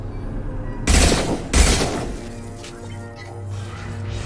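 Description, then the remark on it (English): Two loud, sharp bursts of video game gunfire about half a second apart, each with a booming low thud, followed by a steady low electronic hum that carries on underneath, as the player shoots at a shielded VI connection in the game. “Let's try shooting it.”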